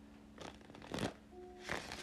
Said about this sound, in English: Let me give the cards a shuffle and we can get right into it.